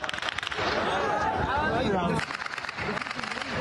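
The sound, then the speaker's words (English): Rapid gunfire crackles in sharp, irregular bursts over a loud, chaotic crowd, with shouting voices and noisy commotion throughout, in Al Jazeera footage of Israeli tanks opening fire after a large crowd ran on a convoy on Al-Rashid Street. “And in footage from Al Jazeera, you can hear gunfire.”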